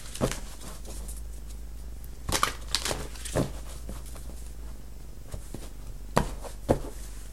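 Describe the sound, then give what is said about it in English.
A deck of cards is shuffled in a few quick, crisp riffling bursts separated by quieter gaps, over a faint steady low hum with no one talking. “Scorpio just got this card, and I shuffled like a crazy person.”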